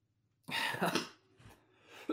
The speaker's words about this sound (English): You made me laugh so hard I coughed.